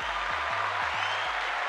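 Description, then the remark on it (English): A crowd cheers and claps steadily, a dense wash of applause filling the short moment at a consistent, fairly loud level with no talking over it. “Yes, cheer for me.”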